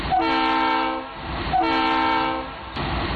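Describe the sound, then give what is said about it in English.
A train horn sounds two long, loud, steady blasts separated by a short gap, with a third blast just starting as it ends, with no voices. “I'll give it 2.5 toots as well of the nostalgia train.”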